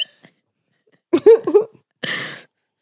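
A quick run of three or four voiced hiccups in a choppy rhythm, followed by a short breathy exhale; no talking.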